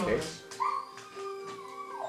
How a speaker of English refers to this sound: In the background, yeah, it's just... just a dog being very happy and not knowing how to...